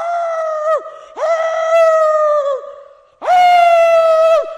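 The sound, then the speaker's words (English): A voice imitates howling at the moon: three loud, drawn-out howls, each a sustained tone that sags downward at the end, with a short pause between the last two and no talking. “Sits out at night and howls at the moon.”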